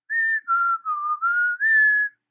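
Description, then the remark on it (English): A man whistles a short, clear tune of about five smooth, sliding notes, steady in loudness, with no talking around it. “After the man speaks, whistling is recorded.”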